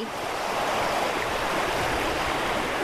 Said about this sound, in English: Oh, that river was running fast.